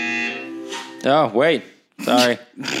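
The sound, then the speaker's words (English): A real buzzer, sounded at a change of topics, gives a steady, buzzy electronic tone for about a second, loud, then gives way to sliding vocal sounds from people. “No, actually, that was a real buzzer though, because I think that we should have a shot in between the change of topics.”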